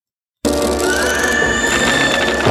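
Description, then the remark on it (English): After a brief silence, a loud, eerie screech like a bat's cry rings out for about two seconds, shrill and strained, its pitch slowly rising, with no voices over it. “All right, maybe it is more like a screech, like a bat.”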